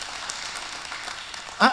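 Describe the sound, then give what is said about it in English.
An audience claps in a steady, crackling wash of applause that holds at moderate level throughout, with a brief voice cutting in just before it ends. “I can tell you, amen, clap for that.”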